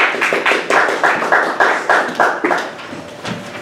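Applause welcoming a speaker before a lecture, made of a steady series of sharp, bright claps, about two or three per second, fading near the end. No talking over it.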